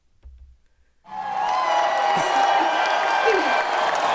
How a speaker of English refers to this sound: So, and then there was an applause and all that. So, and it sounded something like this.